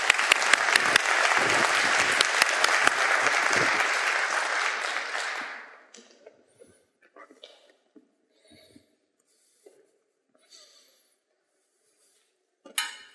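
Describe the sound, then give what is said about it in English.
A crowd claps in steady, dense applause for panelists as they come, for about six seconds before it fades out, leaving scattered faint rustles and a couple of brief clicks. “So please give them a warm round of applause as they come.”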